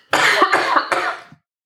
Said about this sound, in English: I'm really sorry. I'm about to cough. Go on then, cough. Can I turn my head away?